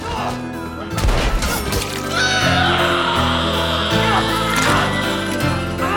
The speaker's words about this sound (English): But if he wasn't nominated, it was obscene because the scream he gives out, like, I really did feel like, let's, why am I doing a impression of it? Here's the scream. Let's listen to it.